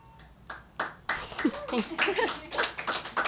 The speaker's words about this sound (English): They're applauding, yeah. We're applauding. They're clapping.